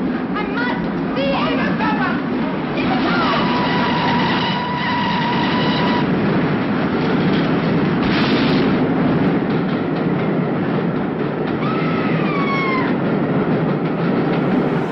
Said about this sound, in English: a disturbed young woman who seems obsessed with looking at the ghost train, which seems to be drawing ever nearer. Listen to it. I've got to see it.